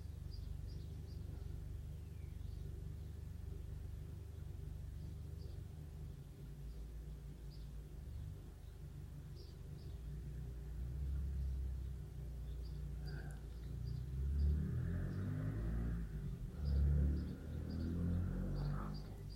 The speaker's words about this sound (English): oh, the car's about to start. You ready? Can you hear it? Can you hear it? Listen.